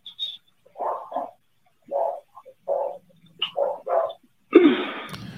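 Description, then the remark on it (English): A dog barks repeatedly inside a house, a series of sharp, moderately loud woofs in uneven bursts, ending with a louder, harsher noisy burst. No one speaks. “dog barking inside.”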